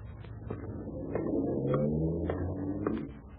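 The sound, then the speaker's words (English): A car engine rumbles and throbs steadily, its low hum swelling slightly as it pulls away to be driven around back to the garage, with a few faint knocks and clicks on top. “Take the car around back to the garage”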